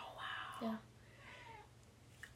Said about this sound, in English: Oh, there's a kitten. And she's so cute and she's so scared and so timid. I love her. She's adorable.